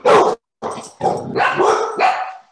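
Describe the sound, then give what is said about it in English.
Dogs bark loudly in a quick series of about five sharp, rough barks, the later ones running together with a slight growly edge. “Okay, my dogs obviously disagree with me because they can read my mind.”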